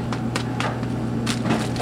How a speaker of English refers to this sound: Seitan is wheat gluten, and more than tofu and more than tempeh, really has great chew. And it also has good flavor. It's got much better flavor than tofu. It comes in this box, and I'm throwing the wheat gluten into a bowl.